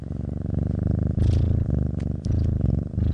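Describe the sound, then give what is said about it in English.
A cat that has just woken up purrs loudly, a deep continuous rumble that swells and dips with each breath, with no voices over it. “She's got a loud purr. She purrs at everything.”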